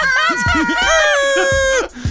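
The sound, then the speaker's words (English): A man imitates his own air horn with his voice, a loud, sustained blaring tone with wavering pitch lasting about two seconds, layered over shifting vocal sounds and cutting off abruptly at the end. “He's making the sound effects for his own air horn now.”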